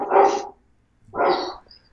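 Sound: dogs barking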